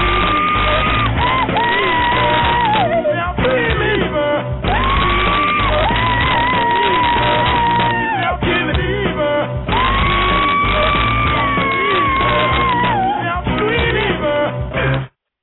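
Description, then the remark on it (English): A man screams and yells in long, strained cries at the end of a rap song, over a loud, dense music track, the hoarse outbursts repeating in waves every few seconds until the song cuts off abruptly. “I love that song, but when he screamed at the end, like the first time I heard it, I got scared because I had my headphones on.”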